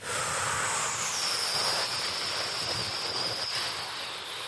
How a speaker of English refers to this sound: Is that an airplane, dude? What is that?